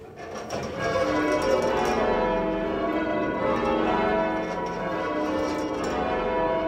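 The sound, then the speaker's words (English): Several church bells are pulled and rung one after another in a steady, continuous sequence, their overlapping tones blending into a loud, resonant peal that fills the whole stretch. “who has been ringing the bells for more than 40 years”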